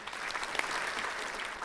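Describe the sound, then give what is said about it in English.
A crowd claps steadily, a dense, even wash of many hands with a bright, hissy texture that holds at a constant level for the whole moment, with no talking over it. “So can we just cheer for that?”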